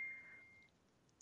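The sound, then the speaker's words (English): A phone notification sounds as a single steady electronic beep from a phone that had been turned back on, fairly faint, fading out after about half a second with no talking around it. “And I know sometimes people get annoyed if they hear my phone going off.”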